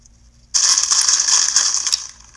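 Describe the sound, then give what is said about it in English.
Crunching of Flaming Hot Cheetos being eaten: a dense, crackly burst of brittle crisp noise lasting about a second and a half, loud and bright, with no voices over it. “I'm eating some Flaming Hot Cheetos.”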